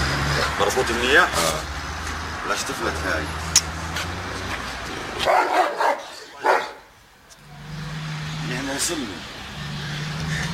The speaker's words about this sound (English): This is going to be a dog barking at some guy not speaking English.